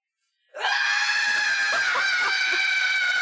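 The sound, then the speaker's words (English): A person lets out a long, loud, strained scream, a human voice imitating the shrieking cry of a devil bird, sustained and piercing for about three seconds after a brief silence. “So yeah, so go ahead and give us a rating expressed in the form of a yell. A bird yell that sounds like a human woman or a boy being slowly strangled.”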